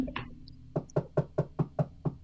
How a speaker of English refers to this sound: Knock, knock. Oh, who's there?